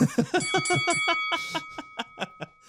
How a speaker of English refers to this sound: It's not a horn. It's a bell. Bell.